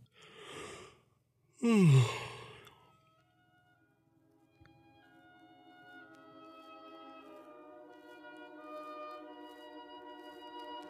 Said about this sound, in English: Does the term yawning have an increased effect on you? Well, it certainly has on me.